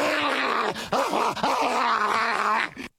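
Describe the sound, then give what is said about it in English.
A dog growls and snarls continuously for about three seconds, a loud, rough, rumbling sound with brief wavering dips before it cuts off, used as a dog-bite sound effect. “The original Racha sound effect I started on this show.”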